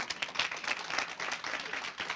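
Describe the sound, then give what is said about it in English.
An audience claps steadily, a dense wash of many hands applauding at once, moderately loud, with no voices standing out. “Give them a hand clap.”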